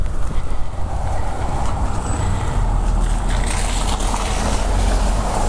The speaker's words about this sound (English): Right, past. Car's gone past.